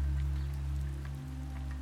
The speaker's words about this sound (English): A delicate rain pattering on the glass gently eases Lily into wakefulness.